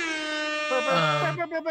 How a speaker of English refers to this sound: Let's, we can do the air horn.